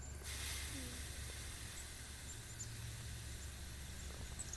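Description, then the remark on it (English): A slow, steady breath pushed out through the left nostril, a soft airy hiss that holds evenly for several seconds with no voices. “Exhale through the left.”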